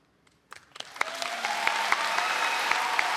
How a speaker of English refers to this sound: Like, and people kind of interrupted in the middle with, like, you know, applause and everything.